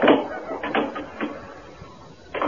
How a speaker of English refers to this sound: Let me close the door.